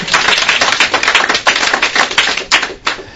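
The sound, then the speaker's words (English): An audience at a panel discussion claps steadily, many hands producing a dense, continuous patter of sharp slaps that stays fairly loud throughout, with no voices. “Yeah, you can clap.”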